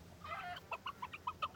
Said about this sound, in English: The chicken was lost and calling to his mother. "Mother," he cried. Mother Hen, I want to get home and go to sleep under your wings.